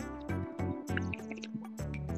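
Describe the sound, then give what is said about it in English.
Someone sipping coffee, a run of four or five wet, slurping pulls in quick succession, fairly loud, with liquid gurgles and no talking. “Hey, let me get like a sip of this coffee.”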